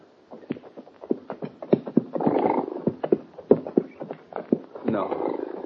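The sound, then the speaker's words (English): A dog-tired roan horse's hooves clip-clop in an uneven, slowing rhythm of sharp knocks as it pulls up in the desert sun, with rough, breathy snorting bursts between the steps and no voices. “Only when the dog-tired roan pulled up alongside him did Hoppy understand it.”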